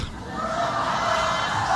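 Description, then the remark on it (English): An audience at a speech by the governor of New York cheers and shouts in a steady, scattered wash of voices, moderately loud, with no single voice standing out. “There was some cheering, but even with a sympathetic audience, I think they were still kind of taken aback”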